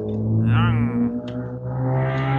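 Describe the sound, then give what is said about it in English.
A car engine rumbles steadily outside a window, its pitch rising and falling slightly as it passes, a low continuous drone filling the whole moment with no voices. “And is that I hear a car.”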